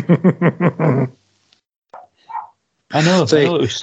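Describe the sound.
A pet dog named Dexter barks in a quick burst of about five sharp barks, followed by a short quiet whine and then a person talking.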